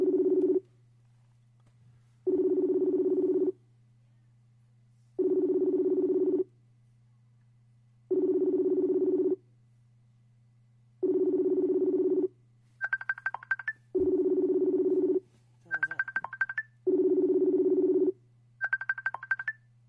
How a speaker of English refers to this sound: Go to your Messenger. I'm trying to call you on Messenger.